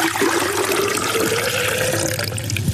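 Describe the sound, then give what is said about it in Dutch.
Water pours steadily into a vase for flowers, one measured liter of water for a test, a continuous splashing stream with a faint rising tone as it fills, running without pause for a few seconds. “Alle bloemen moeten in dezelfde hoeveelheid water.”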